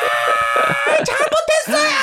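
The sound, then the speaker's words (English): A voice imitates a mother's loud, anguished wailing scream beside a casket, strained and sustained for about two seconds, breaking into sobbing, choked bursts as the pitch wavers up and down. “And my mom just goes, I'm on it! And just starts crying, screaming, I'm on it!”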